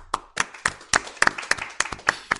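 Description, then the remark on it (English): A small group of Minnesotans claps briefly to rate a book: a handful of sharp, uneven hand claps in a loose rhythm, moderately loud, with no talking over them. “And by Minnesotan applause, can I get the gaggle of Minnesotans rating on this book?”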